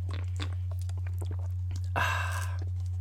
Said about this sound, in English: And I'm going to take a quick sip of coffee. Not sponsored. I just love my Tim Hortons.